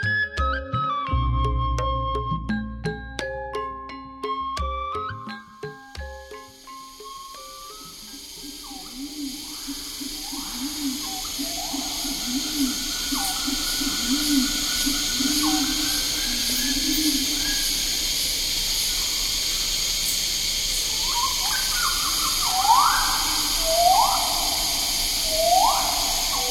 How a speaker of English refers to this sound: We leave you this week with pulsing cicadas, hooting pigeons, swooping rifle birds, and gurgling friars. All recorded near Treetop by Stephen Feld, one morning in the forest on Mount Bosavi, Papua New Guinea.